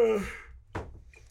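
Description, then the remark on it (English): A person gives a drawn-out, breathy yawn whose voiced tone slides downward and fades, followed by a soft thump and a faint click. “I'm yawning.”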